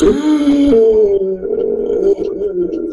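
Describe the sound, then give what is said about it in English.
A voice imitates a big, long gasp for air, the gasp of coming back to life after a Narcan injection: one loud, drawn-out strained intake with a voiced, groaning tone that wavers in pitch and lasts about three seconds, with no words spoken. “the biggest, longest gasp of air just came.”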